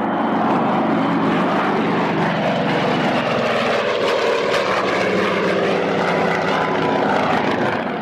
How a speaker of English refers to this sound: I was right about the other airplanes knowing where I was because almost as soon as I got standing on board the fishing boat, one of the A1s made a low pass over the top of the boat.